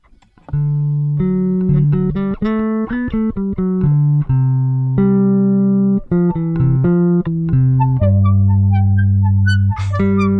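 A rock song intro, played as a 'How Fast Did You Knew?' guessing game question, plays loudly for about ten seconds, a melody of bright sustained notes stepping up and down in pitch, with no voices over it.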